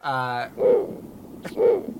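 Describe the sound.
A voice imitates wild owl screeches: one long, strained, tonal cry, then two shorter hoarse hoots spaced about a second apart, fairly loud with no other talk.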